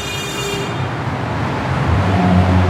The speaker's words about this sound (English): Man, traffic is terrible today.